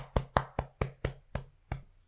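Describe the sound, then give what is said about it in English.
A person beats on their chest in a quick series of seven dull, low thuds, fairly steady then slowing slightly, imitating a turkey flying across a creek. No talking. “But I still have arms, so I'm going to kind of semi-imitate it, but I'm actually going to beat my chest. How about that? So you sound like a turkey flying across the creek.”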